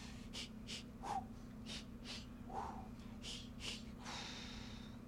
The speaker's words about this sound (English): Gives us a chance to work on our breathing exercises. It should go like this.